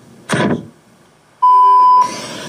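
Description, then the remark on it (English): The SGA 3 audio logo: a swooshing burst, a brief lull, then a loud, steady electronic beep tone with bright overtones that gives way to a noisy rush. No one speaks. “That is a logo, SGA 3.”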